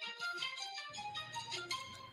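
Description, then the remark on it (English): A phone ringtone plays steadily, a bright, continuous run of melodic electronic tones with a faint low hum beneath, and no one speaks over it. “Pick up the phone, you fat piece of...”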